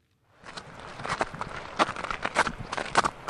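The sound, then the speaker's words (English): Steady footsteps crunch along a rough outdoor path on St. Kevin's Way, a pilgrim path in the Wicklow Mountains, Ireland, a regular walking rhythm of fairly loud steps over a soft background wash of gurgling water. “But the sound of footsteps and gurgling water in the Wicklow Mountains can connect you directly back to the pilgrims of medieval times.”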